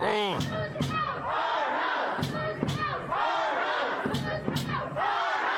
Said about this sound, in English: Sounds like a sound check. Yeah, right. But that's that solid pounding, that's them pounding on the glass doors.